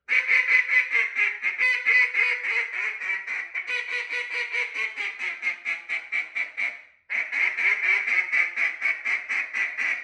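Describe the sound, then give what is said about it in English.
A duck call blows a rapid, steady string of hen quacks, loud, as the caller's second set of hens, with a brief pause near the end before the raspy quacking resumes. No one speaks. “I'm going to go into my second set of hens.”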